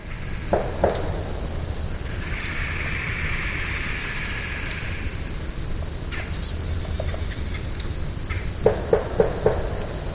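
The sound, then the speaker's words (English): A few short, nasal bird calls, recorded this January by a search team in the Pearl River area, sound over a steady, high insect drone, with a pair near the start and a quick run of about four toward the end. “listen specifically for that signature, that funny nasal-sounding signature in the voice”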